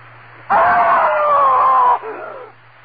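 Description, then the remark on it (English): A man's single loud, piercing scream rises abruptly, holds at full strength for about a second and a half, then breaks off into a fainter, trailing cry over a low steady hum. “I screamed so loudly there was blood in my throat.”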